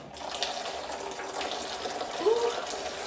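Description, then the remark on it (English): Water pours steadily from an old water bottle to give drinking water, a continuous splashing hiss lasting a few seconds, with a brief gurgling rise near the end. “I'm putting this old water bottle in it.”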